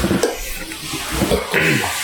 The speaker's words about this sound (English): So his first excuse was I poured too fast. Second, I poured well, fast. The foam's still sitting at the top. So it's not helping much.